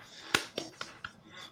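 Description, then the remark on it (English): A few weak, unenthusiastic hand claps, about four sharp slaps spaced unevenly and growing softer, with no voices over them. “This sounded like a pity clap.”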